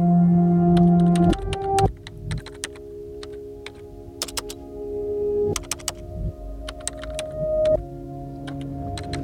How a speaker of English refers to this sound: She stares at the upright, blinking line that is the door for words to walk out of, lifts her fingers to the keys and pushes down.